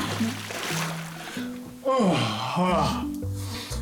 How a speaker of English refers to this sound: Is there some water back there? And she just walks straight to the kitchen and dunks her head into the barrel of water that's there.